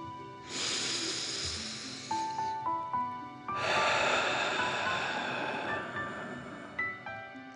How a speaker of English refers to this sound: And let's take three more deep dragon breaths. Remember to breathe in through your nose, filling up your chest and belly, and then out, pretending you are breathing fire. Deep breath in and out.